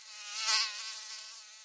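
A thin, high-pitched whine of flying insects buzzing steadily, swelling briefly as one passes, then settling back to a continuous drone. No voices are present.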